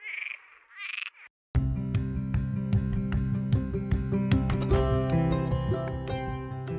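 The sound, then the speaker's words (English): A Cuban tree frog gives two short, raspy, snoring croaks, then music abruptly starts and continues to the end. “you'll be hearing all about Cuban tree frogs and their status as an invasive species in Florida”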